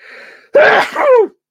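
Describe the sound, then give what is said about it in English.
A single loud sneeze bursts out after a brief quiet moment, a sharp explosive onset followed by a voiced, trailing second part, with no talking around it. “I'm gonna sneeze.”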